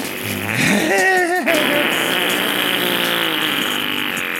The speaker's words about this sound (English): Farts are funny. And I said it.